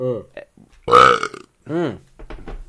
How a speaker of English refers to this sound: I'm glad we didn't burp too much. I thought we were gonna do it more.